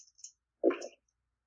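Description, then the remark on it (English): Dice are rolled again in a game: they rattle and clatter briefly across a hard surface, preceded by a couple of faint ticks, then silence. No one speaks. “So here we go. Rolling again.”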